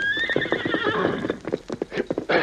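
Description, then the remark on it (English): A horse gives a long, high, wavering whinny that slides down in pitch, followed by a quick run of sharp, rhythmic hoofbeats, with no voices. “My horse was wounded as I left the village, but I rode on.”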